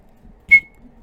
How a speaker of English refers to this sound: He gave a short blast on his whistle, and Harry and Cedric hurried forward into the maze.